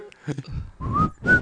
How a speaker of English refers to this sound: No, I was just going to whistle the entire time. I was like, he whistled that, right?